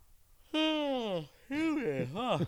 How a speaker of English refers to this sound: I don't know why I promise I wasn't yawning for effect there.